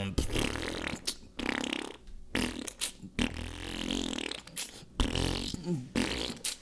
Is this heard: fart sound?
yes